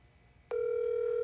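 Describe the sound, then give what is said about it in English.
A phone line ringing out: after a brief hush, a steady electronic telephone tone switches on abruptly and holds unbroken, clear and fairly loud, with no one speaking. “We're gonna give it a ring.”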